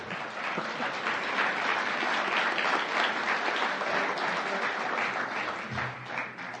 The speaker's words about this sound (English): You know, this is not in my speech, but Paul deserves that applause because I know how incredibly hard he's been working to try to, and he entered this race because of the climate change issue